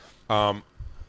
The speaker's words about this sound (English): It was a water burp, too. That one sounded like it slapped the back of your throat. He was like, pip.